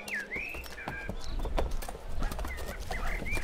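Donkey hooves clip-clop at a steady walking pace, fairly loud, while birds chirp and whistle in the background; a loaded donkey is walked toward the city gate in Moab. Nobody speaks.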